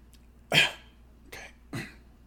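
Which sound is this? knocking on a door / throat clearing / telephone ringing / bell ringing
throat clearing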